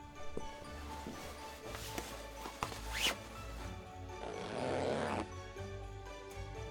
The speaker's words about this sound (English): Actually, can you help me with the zipper? Sure.